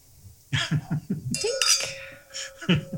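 Wine glasses of 2021 Seghesio Zinfandel from Sonoma County clink together once in a toast, a bright chime that rings on for over a second, with a few people's voices murmuring just before and after.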